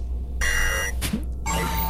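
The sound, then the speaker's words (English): An electronic alarm clock sounds in two loud, sustained bursts of high, harmonic-rich tone, separated by a short gap with a brief noisy swish, over a steady low background hum. “And an alarm clock.”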